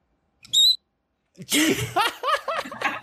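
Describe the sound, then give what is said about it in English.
A person demonstrates a short, high-pitched vocal squeak with a whistle-like tone that rings out once, followed after a pause by a burst of giggling laughter. “Oh my god, was that whistle? Yeah, and no, that was just me. It was like a squeak.”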